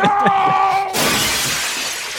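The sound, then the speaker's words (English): Glass shatters in a sudden loud crash, breaking into a bright, hissing spray of tinkling shards that trails off over a couple of seconds, preceded by a brief ringing tone. “There's glass everywhere.”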